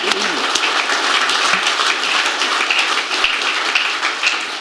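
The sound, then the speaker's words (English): An audience gives a round of applause at an evening event, a dense wash of many hands clapping at once at an even, loud level for several seconds, with no single claps standing out. “So a big round of applause, and say thank you for being so open about the evening.”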